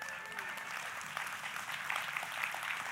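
audience applauding

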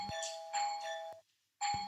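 doorbell ringing

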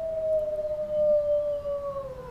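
wolves howling

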